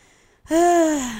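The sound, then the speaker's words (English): A single heavy, emotional breath comes out as a drawn, voiced sigh, loud, its pitch sagging slightly as it fades. No words are spoken. “I was just, like, breathing and thinking.”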